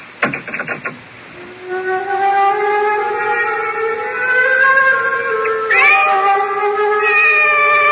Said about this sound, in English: The cat's awake. Her yellow eyes are fixed on me with that calculating look.